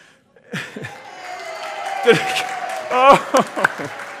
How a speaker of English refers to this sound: Oh, thank God. Holy cow. All right, I have never gotten applause like that. I just want to say. That's such a relief.